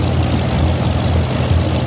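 A Japanese patrol boat engine drones in a steady, heavy low rumble as the boat heads straight for a Sikorsky, fairly loud, holding an even level throughout with no voices.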